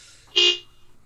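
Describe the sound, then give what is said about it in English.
A single short horn honk, loud and bright with a steady tone, lasting about a quarter second before fading into quiet background. “Is there a train going by?”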